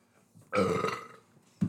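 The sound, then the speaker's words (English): A single loud, drawn-out burp erupts, rumbling for well over half a second before fading, followed by a brief muffled thump. “I heard that burp within like the first like 2 minutes.”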